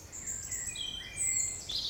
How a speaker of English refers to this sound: What is that mysterious quality in birdsong?